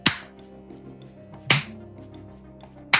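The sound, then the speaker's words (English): Slow, deliberate clapping coming from a monitor: three sharp, crisp claps spaced evenly about a second and a half apart, each ringing briefly over a faint, steady low hum. No voices. “The slow clapping coming from the monitor.”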